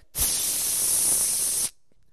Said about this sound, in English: Okay, now the smoke is gone, but there's still a bit of heat. So I give a third spray.